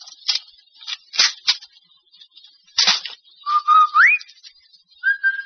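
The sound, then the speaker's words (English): A person whistles a short call on arriving home from work to signal the children, in a household in Kansas City, Missouri: a steady tone sliding upward, then a brief higher note, following several sharp clattering bursts like a door or keys. “The Rinso whistle is our way of telling the children we're home from work.”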